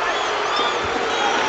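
A large crowd at an Illinois vs. Ohio State basketball game roars and cheers after Nick Smith blocks a shot, in a dense, steady wash of noise that stays loud and even for the whole short moment, with no single voice standing out.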